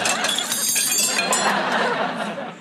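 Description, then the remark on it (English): Smuggled silverware taken from the Savoy falls out when a man is patted on the back, the metal clattering and clinking in a rapid jumble for a couple of seconds, mixed with crowd chatter and some laughter. “The joke there is the guy pats him on the back and all the silverware falls out.”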